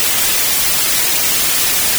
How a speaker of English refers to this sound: Okay, that's white noise. Why white noise? Why not blue, purple, what have you?